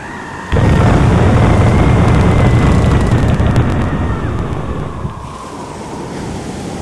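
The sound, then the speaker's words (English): A sudden roar of stormy sea and howling wind as a boat is shipwrecked on a desolate shoreline bursts in and rages loudly and steadily, crashing surf and gusts filling everything before easing slightly toward the end. “On the journey, the boat is shipwrecked on a desolate shoreline.”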